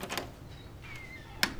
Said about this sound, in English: The footsteps slow, and the door finally opens.